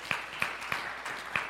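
A brief, fairly quiet round of applause given in thanks to the people of Sedaris: four sharp, distinct handclaps at an uneven pace stand out over a steady, hissing wash of scattered clapping, with no one speaking.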